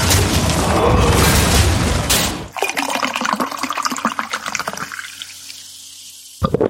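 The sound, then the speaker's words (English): A drink is poured into a glass: a loud, splashy gush at first, then a steady fizzing trickle that thins out, ending with a short clink. No voices. “And we've got a few things to talk about, but before we do that, let's pour a drink and jump right in.”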